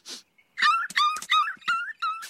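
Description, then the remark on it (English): A short sniffing burst as a dog smells Homer's underwear, then the dog whimpering in a run of four or five high, wavering whines that slide downward, fairly loud with brief gaps between them. “He had one day left till retirement. That poor dog.”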